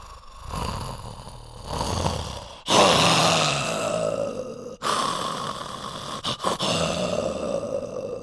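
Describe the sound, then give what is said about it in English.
A puppeteer voices the tiger Richard Parker in a stage performance, producing a series of rough, breathy growls and snarling roars in loud bursts separated by brief pauses, with no speech. “But human vocal cords and chest cavities don't deliver the menacing resonance of a real tiger's roars.”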